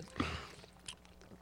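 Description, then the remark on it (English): Quiet mouth sounds of people drinking and chewing, with a wet burst near the start and another shortly after, over a low background hum and no talking. “Everybody drinking, chewing and shit.”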